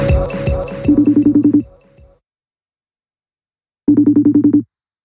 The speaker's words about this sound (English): don't pick up this goddamn phone.